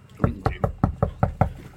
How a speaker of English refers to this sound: That was my niece knocking on the door as well, just at the end.